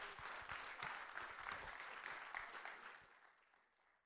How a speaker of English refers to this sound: Let's give the Lord a hand clap of praise real quick. Come on.